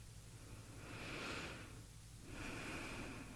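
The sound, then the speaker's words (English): A slow, deep breath taken while pausing after shoulder blade exercises: an airy inhale swells and fades, then after a short pause a long exhale follows, soft, with no talking. “And pause and turn off all of your efforts and take a breath.”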